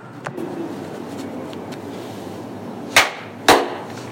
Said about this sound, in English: do a clap at the beginning. Okay.